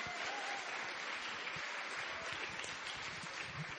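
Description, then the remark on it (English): Steady applause from an audience at the Powerhouse Arena, an independent bookstore, for the launch of the book You're the Best by the Satellite Sisters: a dense wash of many hands clapping at once, sustained and even throughout without any voices standing out. “How about a round of applause for our event tonight, the launch of You're the Best by the Satellite Sisters.”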